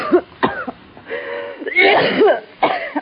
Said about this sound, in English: You got a bad cough. You need some sun.